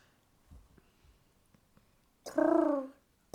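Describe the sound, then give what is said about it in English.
After a near-silent stretch with a few soft bumps, a person imitating a pigeon makes one loud, warbling, pigeon-like coo with their voice. It rises and falls for about half a second, with no talking. “Can you do the noise of a pigeon?”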